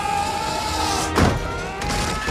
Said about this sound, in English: Explosion. This is such a good explosion.